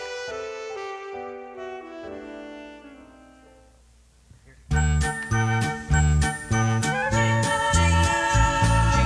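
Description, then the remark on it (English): A Christmas song plays from a cassette tape with no vocals, opening with soft, fading chimes before a loud, bouncy instrumental kicks in halfway through, full of bright jingling bells over a steady beat. “There was nothing else to do but play the next song on the Christmas 95 tape.”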